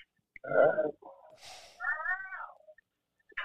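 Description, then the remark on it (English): A strange, warbling cat-like yowl from a Bunny Mac movie rises and bends in pitch, broken by a breathy noisy burst, then trails off; a brief faint cry returns at the end. “Sound like a weird cat.”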